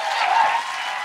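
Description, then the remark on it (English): A brief burst of audience applause, a dense, steady wash of many hands clapping at once, fairly loud and even throughout with no voices standing out, as a live show audience applauds itself for coming out, at the end of the show. “Give yourselves a round of applause for making it out.”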